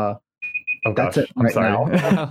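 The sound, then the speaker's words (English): A quick run of high electronic beeps, like a timer alarm, sounds briefly and clearly before people start talking over the end of it. “And also the timer is going off.”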